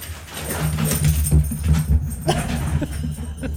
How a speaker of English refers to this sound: I'm hearing it now. Is that your dog? It was my dog chasing the cat. I thought it was the train for a second. But hearing it in my headphones now for the first time, it scared the shit out of me. It's really disturbing.